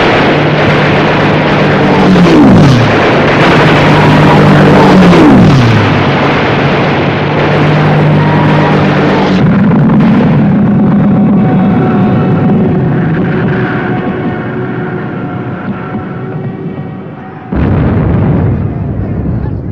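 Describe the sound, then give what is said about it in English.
Loud, dense battle noise from the special effects of an air attack in a 1953 film: roaring aircraft engines of planes flying over with diving pitch sweeps, bursts of gunfire and heavy explosions, thinning to a sustained drone before another sudden blast. “That whole series of special effects with the attack, I think, is extremely well done for 1953, you know, with the planes flying over.”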